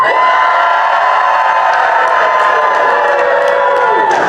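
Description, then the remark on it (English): A large concert crowd screams at full volume all at once on a count of three, a dense, sustained roar of many shrill voices with scattered whoops, loud and steady throughout without any pause. “So on three, you're all gonna scream as loud as you can, and we're gonna capture it, because then I'm gonna send it to Buck, and he's gonna make good content with it.”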